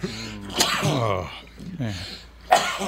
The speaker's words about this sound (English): I have to sneeze.